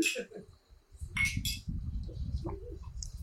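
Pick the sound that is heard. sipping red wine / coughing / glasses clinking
glasses clinking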